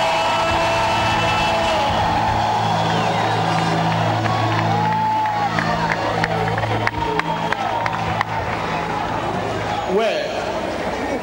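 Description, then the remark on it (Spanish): A church audience, called on to give its best shout of celebration, shouts and whoops, a dense, loud wall of many voices sustained for about eleven seconds over steady low droning tones, with scattered higher cries rising above. “Si tú lo crees, dale tu mejor grito de celebración.”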